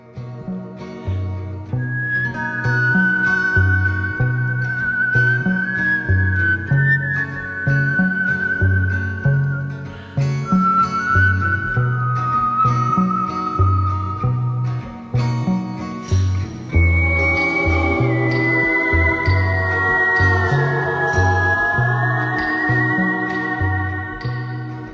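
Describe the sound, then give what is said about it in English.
A clear, melodic human whistle carries a slow tune over a steady instrumental backing with a rhythmic bass pattern, the whistled line sustained and prominent throughout, with no talking. “Whistles. Check it out.”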